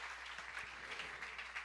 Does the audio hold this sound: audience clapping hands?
yes